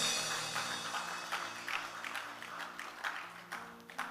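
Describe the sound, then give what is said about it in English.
An audience claps together as a clap offering to the Lord, a dense, steady burst of applause lasting about four seconds, many overlapping hand claps at an even loudness, with low sustained keyboard tones humming underneath. “If you believe it, give the Lord a good clap offering.”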